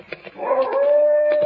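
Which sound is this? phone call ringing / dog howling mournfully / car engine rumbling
dog howling mournfully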